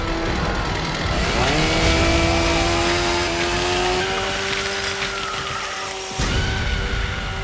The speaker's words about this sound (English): we know what's coming as we see Leatherface revving that saw